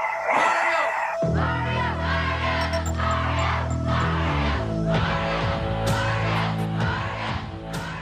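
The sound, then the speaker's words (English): A large crowd at a boxing match in the Bronx, 1988, cheers loudly and continuously, a dense roar of voices packed with whoops, yells and screams that holds steady for about eight seconds. “We hear the sound of a large crowd cheering.”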